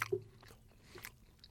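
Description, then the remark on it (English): Quiet chewing by a person of a tough, chewy dog food treat: soft irregular mouth clicks and squelches over a second and a half, with no crunch and no talking. “Very chewy. Hard work.”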